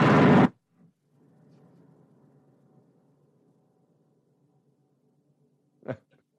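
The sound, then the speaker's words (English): A refrigerator is kicked: a loud, abrupt thump opens, followed by a low, wavering hum that drones for a couple of seconds and fades, then one more short thud after a pause. “But if you went home and you kicked your kitchen, let's say you kicked your refrigerator and it went.”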